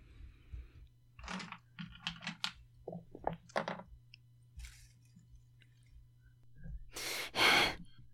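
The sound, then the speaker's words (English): Dice tumble down a dice tower in a quick run of light clicks and rattles, coming up a 7, followed near the end by a loud breathy burst of noise. No one speaks. “My dice tower doesn't like me.”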